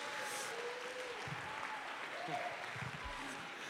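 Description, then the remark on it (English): An audience at a Sunday morning church service claps their hands in praise in a dense, continuous wash of applause, with faint voices murmuring and calling out beneath it. “Oh, clap your hands one more time and give him praise.”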